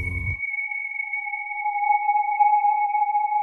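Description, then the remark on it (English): A timer starting: a short low thump, then a steady electronic tone holding two pitches, mid and higher, sustained unbroken for about three seconds at moderate loudness. “So I'm setting my timer now.”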